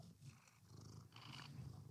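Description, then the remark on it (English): A cat purrs, a steady low rumble with rhythmic pulses running continuously throughout, soft but clear, with no talking. “My cat and I both thank you.”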